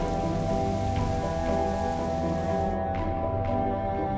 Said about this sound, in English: Come on, let's get out of the rain.